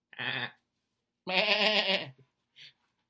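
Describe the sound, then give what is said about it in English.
A person mimics a sheep's bleat with two nasal, quavering "baa" calls, a short one followed by a longer, wobbling one, fairly loud, then a brief faint sound. “Sheet. Not sheep.”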